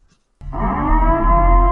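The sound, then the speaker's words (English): A loud air horn siren blares after a brief silence, holding one steady, buzzing low tone with rich harmonics until the end, no voices present. “That's just an air horn. Or an air... siren.”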